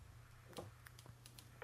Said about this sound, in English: I hope I dial that number.